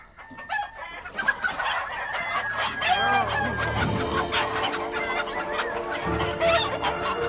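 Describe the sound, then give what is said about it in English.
A noisy flock of chickens in a chicken coop behind a barn clucks and squawks continuously while roosters crow loudly over them, a dense, chaotic barnyard racket with no voices. “So they try to walk past the zombies, but they wake up the roosters, and this is what happens.”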